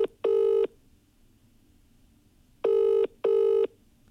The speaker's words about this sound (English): It's funny because I don't even know who you're ringing because I can't see your phone. So it's randomly, if they answer, it's just going to appear. Ladies and gentlemen, let the phone ring.